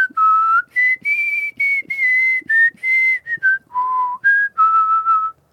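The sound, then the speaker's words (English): Someone whistles a movie theme tune, a string of clear sustained notes rising and falling in pitch with short breaks between phrases, performed alone with no talking. “No, that's the theme that of Harry Potter.”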